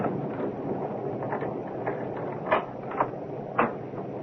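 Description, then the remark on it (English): A key rattles and turns in a front door lock, followed by a latch clicking as the door opens; three sharp clicks over a steady background hiss, with no voices. “Oh, it's locked. Do you have a front door key”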